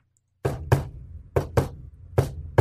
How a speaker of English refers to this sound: He asks for the secret knock.